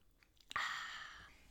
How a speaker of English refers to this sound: So grab your coffee, take a little sip. I'm going to.